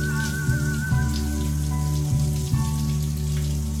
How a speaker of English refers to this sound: Rain sounds are loud, yet give a calming effect.